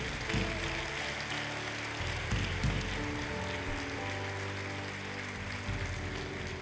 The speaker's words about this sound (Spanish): Date un aplauso.